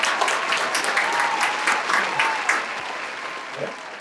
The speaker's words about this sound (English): Can we get a round of applause?